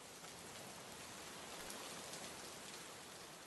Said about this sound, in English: Oh, and there's one other important detail about this story. It's pouring rain.